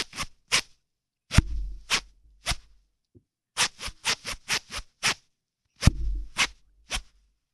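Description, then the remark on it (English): A clothing zipper is zipped up and down close to the mic in quick rhythmic bursts, to the beat of a song in a guess-the-song game called Zip the Hits. It makes a string of sharp raspy strokes, grouped like a beat with brief pauses between sets. “Is your hand on your zipper? My hand's on my zipper.”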